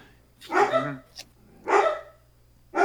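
Dogs bark in a few short, loud bursts spaced about a second apart, with a low steady hum running underneath the whole time.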